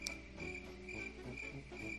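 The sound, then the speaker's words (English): Crickets chirp steadily in a continuous, high-pitched trill, with a soft background hum and no voices. It sounds like a quiet stock sound effect lasting a couple of seconds. “This will be the episode of the most crickets.”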